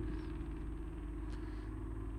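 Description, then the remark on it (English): A loud, throaty straight-pipe exhaust from a passing vehicle, a deep rumbling drone with steady low engine harmonics that holds for about two seconds with no voices. “Straight pipes.”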